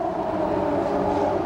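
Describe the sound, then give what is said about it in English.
A loud air raid siren in Baghdad, sounding very early in the morning as the American-led bombing began, holds a steady, droning wail throughout, its sustained tone filling the whole moment with no voices present. “Waking up to the sound of the air raid siren going on.”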